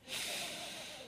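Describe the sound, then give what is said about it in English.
A single long, breathy inhalation through the nose, an airy hiss sustained for about a second as someone sniffs deeply to smell a chocolate bundt cake. “I have a peculiar capacity to sniff out chocolate.”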